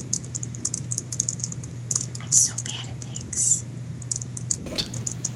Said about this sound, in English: I have to type this or I will forget.